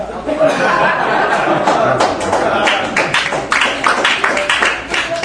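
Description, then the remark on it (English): A crowd at a comedy show applauds a joke with dense, steady clapping that holds fairly loud for several seconds, sharp individual claps popping out, mixed with a murmur of chatter and a few chuckles. “That's an applause on that one,”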